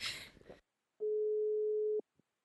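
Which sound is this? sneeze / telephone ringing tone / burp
telephone ringing tone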